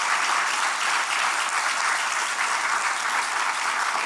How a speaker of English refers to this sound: That is worthy of a hand clap for God. That's worthy.